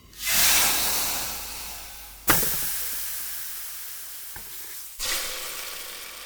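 Water drops hit a very hot surface, setting off loud fizzing sizzles. Each bright hiss flares suddenly and slowly fades, with three or four separate bursts and no voices.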